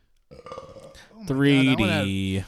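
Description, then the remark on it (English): A loud, drawn-out belch rumbles for about a second, following a brief stretch of muffled, choppy voice-like noise. “I'm an asshole when I burp and chart.”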